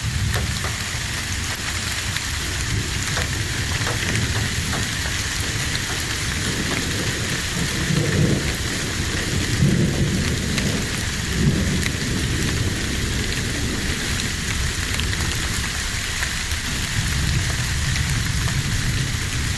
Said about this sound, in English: A little light rain today. A little thunder in the distance.